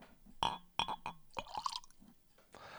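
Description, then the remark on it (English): A 12-year-old single malt whisky glugs into a glass: a handful of bright, ringing splashes in quick succession, then a softer trickle as the pour tails off. No one speaks. “And cheers. This is a very nice 12-year-old single malt.”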